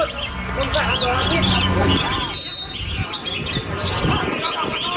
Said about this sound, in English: sounds like parakeets to me. Yeah, it's like a red something or another.